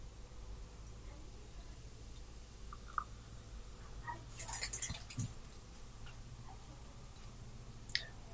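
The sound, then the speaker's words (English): Coopers beer pours into a clean glass in a soft, faint trickle of liquid with a brief splashy burst midway, surrounded by small clicks and a low steady hum. No one speaks. “pouring the Coopers.”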